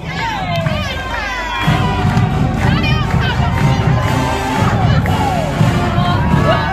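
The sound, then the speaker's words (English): A loud, dense crowd at Eagle Walk cheers and shouts without pause as the Pride of Mississippi marching band walks by, with high whoops and excited voices, some sounding like children, rising over a steady roar of noise. “The Pride of Mississippi is about to walk by. You can hear them in all of their glory.”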